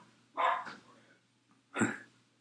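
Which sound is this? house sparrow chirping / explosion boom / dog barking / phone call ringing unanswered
dog barking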